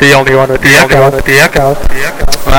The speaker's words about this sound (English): The echo.